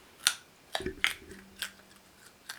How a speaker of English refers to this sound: You're fucking chewing like Bugs Bunny. What's up, Doc?